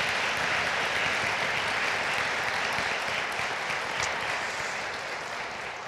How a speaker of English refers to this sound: Okay, round of applause, please. for these gentlemen up here.